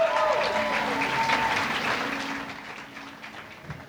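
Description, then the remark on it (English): An audience claps for Dave Hill in a dense, steady wash of applause that starts strong and gradually thins out and fades over a few seconds, with a faint tonal ring lingering underneath. “Clap your hands for Dave Hill.”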